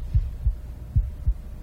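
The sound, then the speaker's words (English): A heartbeat thumps on its own from behind a door, muffled: two low lub-dub pairs of deep, soft thuds in a slow, steady rhythm over a faint hum. “Lub-dub, lub-dub, lub-dub.”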